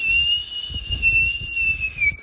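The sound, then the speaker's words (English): Someone whistles in imitation of a stovetop kettle: a single piercing, steady high tone held for about two seconds, dipping slightly at the end, with faint low rumbling underneath. “You'd fill it with water and turn the hob on, and then when it was boiled, the steam would create a whistle.”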